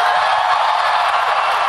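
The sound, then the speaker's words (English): A crowd of about 200 people applauds steadily after a speech announcing a run for president of the United States, in a video from The Guardian: a dense, continuous wash of many hands clapping at once, loud and even throughout with no voices standing out. “Yeah, people are clapping, and then some of them slowly stand up.”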